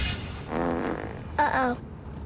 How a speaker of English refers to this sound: I sharted.